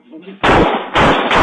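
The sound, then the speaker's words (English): Three loud, harsh gunshots in a played video ring out in quick succession, fired by a man who ducked first, about half a second apart, each a sharp crack with a ringing tail, after a brief stretch of faint, muffled voices. “That nigga duck first before he shot.”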